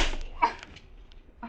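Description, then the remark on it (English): A few sharp, smacking slaps to a person's face land in quick, uneven succession, moderately loud, with brief pauses between hits and no talking. “What are you slapping me around for?”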